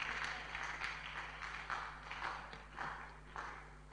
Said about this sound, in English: Stand to your feet and clap your hands for the Lord.